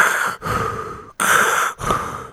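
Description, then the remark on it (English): A voice imitates respirator breathing: four loud, hissing breaths alternating in and out, each lasting about half a second with brief gaps between them. “My mom just pulls out like a respirator.”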